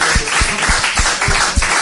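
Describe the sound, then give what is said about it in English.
A crowd applauding: a steady wash of many hands clapping at once, loud and dense, with a few sharper individual claps standing out, and no voices. “So I think that deserves a huge big round of applause.”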